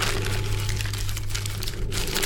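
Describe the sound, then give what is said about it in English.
Steady crinkling and crackling of dry, brittle, yellowed paper as a scroll more than 1,000 years old is unrolled, lasting a couple of seconds with no one speaking. “The scroll was old. Very old. More than 1,000 years old. Perhaps 2,000. The paper had turned yellow and was very brittle.”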